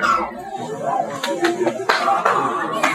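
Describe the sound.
Scattered hand claps, a handful of sharp slaps at uneven intervals, rise over a steady murmur of voices talking in the background, like a small crowd starting to applaud.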